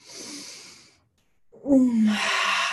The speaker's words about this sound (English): And so as we end the practice, you can gently stretch your body, open your eyes. You can even take a big yawn.